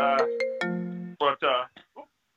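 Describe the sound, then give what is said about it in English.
A phone ringtone plays a short electronic melody of steady stepped tones for about a second, then stops as a person starts talking. “That's your phone.”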